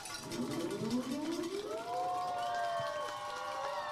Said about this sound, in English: Air raid siren goes off.